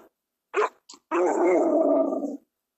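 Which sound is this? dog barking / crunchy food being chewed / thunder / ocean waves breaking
dog barking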